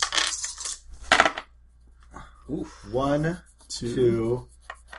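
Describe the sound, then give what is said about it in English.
Five dice clatter and tumble across a hard tabletop in two quick bursts during a tabletop game, followed by a couple of short voiced murmurs. “All right, give me 5 so dice. 5 extra dice for you.”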